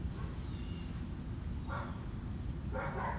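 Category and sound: animal, dogs barking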